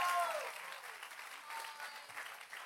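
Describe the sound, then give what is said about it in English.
A church audience breaks into steady, sustained applause for God, many hands clapping together in a dense, even patter for a few seconds, with a brief vocal tone at the start. “Come on, give God a good hand clap if you believe he's good.”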